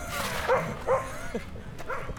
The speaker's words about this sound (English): Before the barking dog attacks.